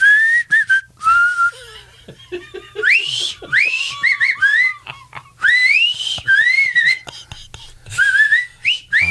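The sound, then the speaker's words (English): A person whistles the Old Spice commercial jingle, a bright, sliding melody, for several seconds, the tune rising and falling in quick phrases with short breaths between them. “Old Spice, of course. You always had the whistling.”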